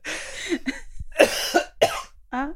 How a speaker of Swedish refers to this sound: jag blir så sugen på att hosta här nu när vi har pratat om det. Kan jag bara få?